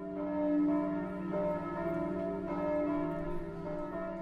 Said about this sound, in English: And we hear the bells ringing at one point, and so it seems like there is no hope and that there may not be any people left.